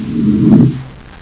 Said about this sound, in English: Buzz sets the Terra 5 down on the surface of the moon.